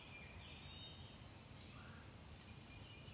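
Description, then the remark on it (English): Several birds chirp and whistle in short, high-pitched calls in the morning as they wake up, scattered across a steady outdoor background hiss with no one speaking. “The animals and birds waking up.”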